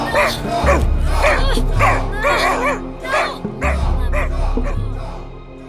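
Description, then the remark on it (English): A dog barks and yelps in quick, excited bursts, mixed with whining whimpers, loud over a low rumbling background, at the top of a dam. “Bring the agent and the dog. No! Doggo!”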